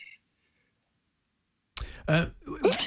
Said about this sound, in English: All the years, in all my years of broadcasting, doing Match of the Day, doing BT, doing whatever else I've done, I think that's the first time I actually had to sneeze.